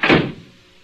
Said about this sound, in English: Close the door, quick.